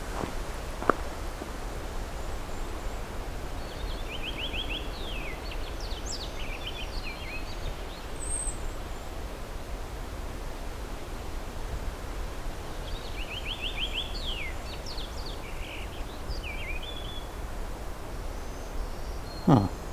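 A purple finch sings two quick, warbling phrases a few seconds apart, fairly faint over a steady outdoor hiss with occasional soft rustling.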